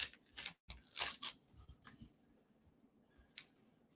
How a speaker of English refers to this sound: This one's a little hard to open because it's small. But we're going to get it open, don't worry. What is this one? This one's not easy to get out of the packaging.